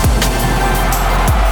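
Two sharp hand claps cut through a loud, steady low rumble, with no voices present.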